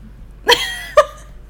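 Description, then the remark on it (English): Two sharp bursts about half a second apart, like a sneeze, the first longer and ringing, the second shorter and abrupt, against a quiet background with no talking. “Bless you.”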